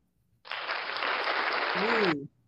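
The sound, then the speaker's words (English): An audience claps steadily and loudly for roughly two seconds to welcome a guest onto a show, a dense even wash of applause, with a brief voice sliding up near the end just before the clapping cuts off. “Love that applause.”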